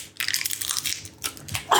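Crinkly plastic wrapper being squeezed and tugged, a bright continuous crackling with a couple of short pauses, ending in a sharper rustle as the packet is worked at.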